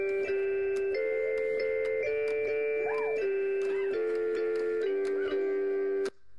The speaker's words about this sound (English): So we like stepped up beyond just recognizing individual notes, and here's our latest thing that I've been working on with her on the cat piano.